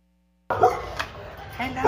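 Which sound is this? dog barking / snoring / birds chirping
dog barking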